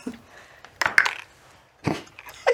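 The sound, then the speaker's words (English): Dice clatter onto a hard tabletop in a few sharp bursts of rattling clicks, fairly loud, one die hitting a card, with brief quiet gaps between the tumbles and no voices. “Does that count? It hit the card. Go ahead and roll again.”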